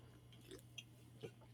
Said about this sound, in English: I had to take a sip out of my Fanny Farkle's cup. I love having a lot of dead space. Which is me drinking Diet Sunkist out of none other than a Fanny Farkle's cup.